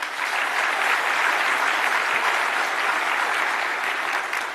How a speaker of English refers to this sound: Let's give a round of applause again to our speakers.